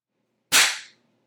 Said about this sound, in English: Let me try clapping my ass cheeks.